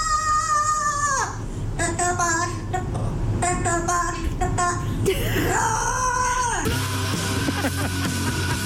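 A parrot screeches and wails in loud, gliding harmonic bursts over heavy, distorted death metal music, its shrill cries rising and falling in rough time with the song.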